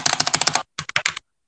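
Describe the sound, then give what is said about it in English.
A rapid burst of sharp, clacky keystrokes on a mechanical keyboard, fairly loud, followed by a brief pause and a second shorter flurry of typing, as someone types the words "e-bike GX performance motor". “I'm a mechanical keyboard. It's super loud.”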